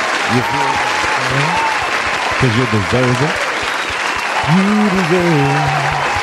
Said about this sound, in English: Again, both video and audio numbers are up across the board. So give yourselves a hand clap of praise real quick.